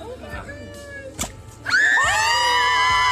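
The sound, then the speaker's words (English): A crowd murmurs, a sharp pop cuts through as a Jell-O-filled watermelon bursts in the mouth of an alligator named Sally, spraying blue goo, then loud cheering and high-pitched screams swell and hold, many voices overlapping in an excited roar. “after wrestling with an alligator named Sally, a watermelon filled with Jell-O was tossed into the alligator's mouth, one that burst quickly in her hauntingly primitive maw, spraying the blue goo to a chorus of cheers.”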